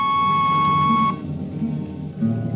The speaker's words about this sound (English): On a Hawk-class clunker in those days, damping was done by hand with a multiplying vernier and a danger peeper. Jetman slept with one ear tuned to that, and as long as the peeper ticked off slow and steady, we knew the ship was safe.